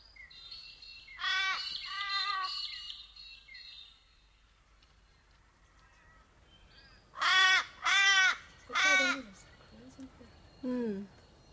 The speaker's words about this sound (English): They're ominous, the crows. Are they here for the sheep?